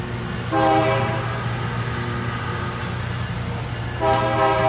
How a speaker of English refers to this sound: Maybe they're doing some repairs further down on the tracks there. Something's going on, I don't know. You got work trains coming through.